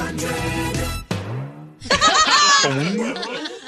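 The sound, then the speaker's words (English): A busy Z100 radio station jingle for the Zoo Crew from the Nut Hut, bright music and sung or spoken voices, broken by a springy cartoon boing whose pitch drops sharply, then a wobbling, bouncing tone near the end. “Listen to that last little boing.”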